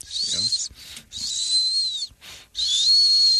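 A thin, high-pitched nasal whistle sounds in three airy bursts, each a steady breathy tone with a faint pure pitch riding on top, separated by short pauses like repeated breaths through the nose.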